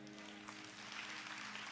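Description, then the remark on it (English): A crowd claps steadily when asked to clap louder if they believe, the dense applause filling the space evenly with a faint low hum underneath, sustained and moderately loud throughout with no voices standing out. “Clap louder if you believe it.”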